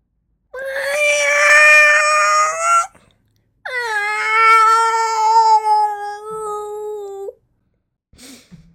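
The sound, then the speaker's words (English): A cat yowls twice in long, drawn-out wails, loud, with a short pause between them and a brief faint sound at the very end. “Pretty sure one of your cats tried smothering you in your sleep and you imagined the rest.”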